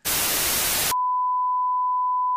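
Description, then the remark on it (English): A loud burst of static hiss cuts abruptly to a single steady electronic beep, like an old cell phone tone, held unbroken for about a second and a half with no voices. “That was my ringtone in high school.”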